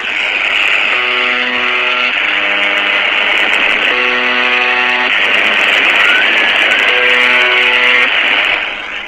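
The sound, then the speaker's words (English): Harsh, steady radio static from a mysterious radio transmission, with a loud buzzing tone that cuts in and out in three separate bursts, and a faint woman's scream buried in the noise near the end. The noise started in the early 1980s. “And I hope you guys could hear it, because besides that stupid buzzing noise, there was actually a woman's scream right at the tail end of that.”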